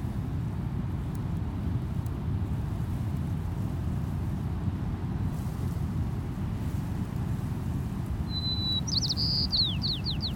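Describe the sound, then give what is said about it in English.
Near the end, a white-crowned sparrow sings a clear whistled note followed by quick, buzzy descending phrases, set against a constant low roar of distant ocean surf and wind in the dune grass. “Here's our first bird species of the day, a white-crowned sparrow.”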